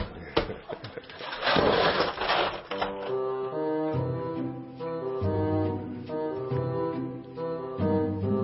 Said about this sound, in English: I freeze the credit card so that it's not easily accessible. And what I'm doing is thawing out the ice. And it's a lot of effort, so in order for my wife to use it, she has to put some labor into it.